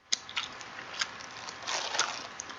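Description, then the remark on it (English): Loud, wet gum chewing with irregular smacks and squishy clicks, a few sharper snaps standing out over a steady moist mashing, with no voices. “This is the regular Crank chewing.”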